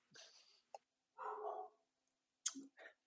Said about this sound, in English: I think the dog just barked Corey Kluber's name.